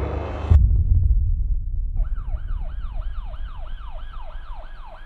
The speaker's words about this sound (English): I heard multiple sirens go by my home. And we walked around the corner, and they were all at Julie's home. It was ambulance, it was police, fire trucks.